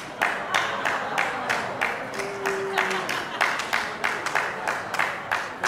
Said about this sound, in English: You clapped too early. You messed up my timing.